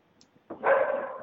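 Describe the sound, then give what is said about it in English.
A dog gives one loud, drawn-out bark, breaking a moment of near silence and carrying on to the end. No one speaks. “Bad dog.”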